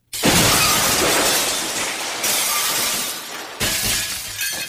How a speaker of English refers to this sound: Yeah, it's breaking. Okay, breaking.